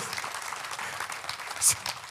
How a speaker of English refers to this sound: Can we give Jesus a hand clap? Come on. Wow.